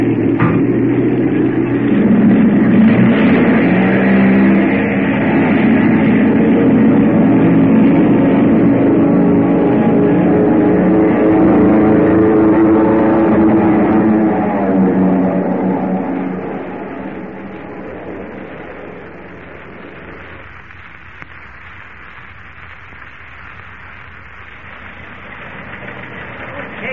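An airplane takes off with a loud, steady engine roar and droning tones that hold for several seconds, then fade away, leaving a quieter low rumble.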